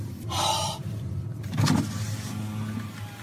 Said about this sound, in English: By the way, I love the sound effect of that window rolling down. I got to play that again. I think that's my favorite part.